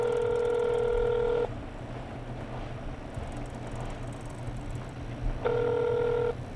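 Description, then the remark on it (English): An electronic phone ring sounds twice, each steady tone burst lasting about a second with a long silent gap between, over a low constant background rumble. “I froze as my phone rang.”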